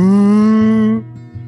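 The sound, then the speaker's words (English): One loud, drawn-out cow moo, steady for about a second before cutting off, leaving a quieter low rumble behind it. “These cow aliens abducting me.”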